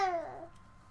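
A one-year-old baby babbles in a short, wavering vocal burst that slides gently downward in pitch and fades quickly, leaving a faint, quiet tail.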